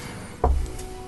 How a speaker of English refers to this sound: This, every time this chair creaks now, it picks up